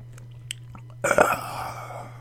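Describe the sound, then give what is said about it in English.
A few faint mouth clicks, then a loud slurping sip of alcohol from a glass followed by a wet swallow, over a steady low electrical hum, as a man drinks alone at a microphone on tatami mats in his man cave. “I'm trying to take really obvious sips of booze.”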